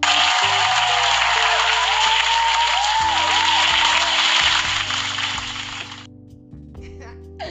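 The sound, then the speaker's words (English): A dense round of applause crackles steadily for about six seconds over a low, droning musical bed, then cuts off, leaving the music alone before it briefly returns. “So round of applause for me and my growth.”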